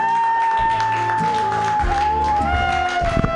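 An audience claps steadily for a few seconds, a dense wash of applause with a sustained high-pitched tone ringing through it, holding a fairly even level throughout.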